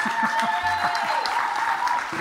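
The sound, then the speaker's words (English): An audience applauds the speaker after being prompted, a dense, steady wash of clapping that holds at an even, moderately loud level through the whole short stretch. “You get so used to me, you never applaud anymore, just saying.”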